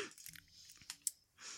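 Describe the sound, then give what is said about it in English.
Quiet wet mouth noises as someone slurps a shot of Kahlua off fingers: a few short sucking slurps with a sharp smack partway through, ending in a longer drawn-in slurp, with no talking. “You trying to slurp it out the fingies?”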